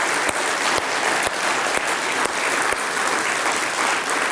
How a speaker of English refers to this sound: And these guys in this picture behind me, I want you to give them a round of applause, all right?